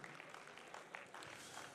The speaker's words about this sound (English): Thank you, worship team. You guys are awesome. Let's give me a round of applause.